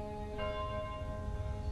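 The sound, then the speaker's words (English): Church bells ring with a sustained, shimmering tone, a fresh strike blooming partway through over a low rumbling background, steady, with no voices. “The bells of day had scarcely rung out again, a mockery in the unlightened dark, when far away he saw fires spring up.”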